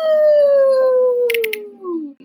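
A wolf lets out one long, loud howl that starts high and slowly slides down in pitch over about two seconds, with a couple of brief crackly bursts midway before it cuts off.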